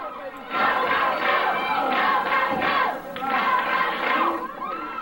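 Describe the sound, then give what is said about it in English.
A wrestling crowd roars and cheers loudly for Bobby Eaton during his match against Moondog for about five seconds, a dense wall of shouting voices that swells and dips briefly before surging again, with scattered yells rising above the din. “Crowd getting behind Bobby.”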